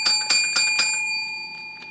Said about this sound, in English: Well, we gotta ring our bell.